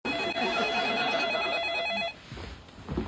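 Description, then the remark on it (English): A telephone rings once, loud and close, a bright trilling bell lasting about two seconds before cutting off, leaving faint room noise and quiet movement. “Jerry and Elaine are sitting in Mr. Pitt's apartment waiting for the doorman to leave when the phone rings.”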